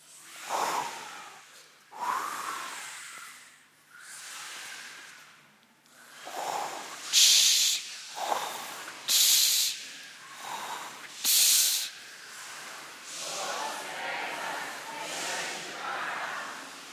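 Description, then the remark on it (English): One side of a group of children imitates the wind on a count of three, making rising and falling whooshing breaths and a few sharp hissing bursts in uneven waves, steady and fairly loud throughout. “Over this side, you're going to be the wind.”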